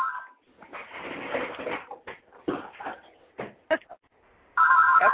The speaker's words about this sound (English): Sorry, I have a real-life phone in the background. I'm trying to get this caller on the line, too.